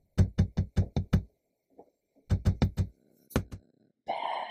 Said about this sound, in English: The tapping continued and the voice grew louder.